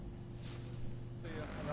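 An airship's engine runs up at Barton as it prepares to leave for a trip over the Etihad Stadium in Manchester, with a steady, droning hum and strong low tonal harmonics, loud, holding an even level throughout with a slight rise toward the end.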